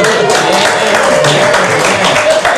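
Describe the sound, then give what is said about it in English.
A studio audience cheers and claps, a dense, steady wash of loud crowd noise with rapid hand claps that holds evenly for a few seconds. “Everybody cheer.”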